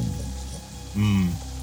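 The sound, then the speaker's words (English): Steady, even rain hisses throughout, with a low hum beneath it and a brief voiced sound rising over it around the middle. “But the rain is kind of soothing.”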